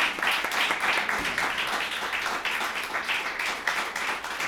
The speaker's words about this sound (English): Let's give Andrew a round of applause.